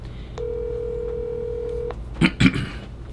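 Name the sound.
outgoing phone call ringing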